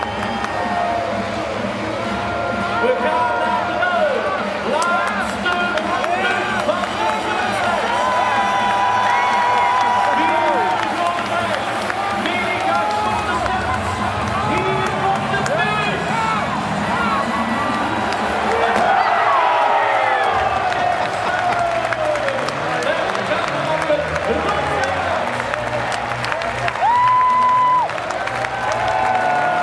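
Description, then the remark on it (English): A large crowd cheers and applauds without a break at a track cycling race with three laps to go, sensing a home win; a dense roar of voices, clapping and whistles that swells and surges as the race builds, staying loud throughout. “The crowd are really getting into it as well. They can sense the home win here”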